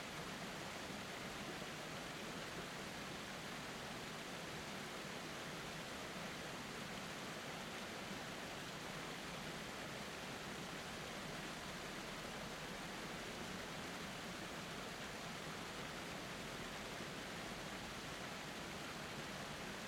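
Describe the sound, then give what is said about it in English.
A steady, unbroken rush of a waterfall fills the whole stretch as an even, hissing roar with no voices and no breaks. “Just stand there in this moment and soak in the beauty of this waterfall, of the peace that is flowing over you right now.”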